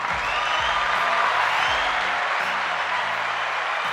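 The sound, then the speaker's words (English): A dense, steady roar of crowd cheering and applause fills the whole stretch, loud and continuous, with a low tonal music bed humming underneath. “The crowd's going crazy once again.”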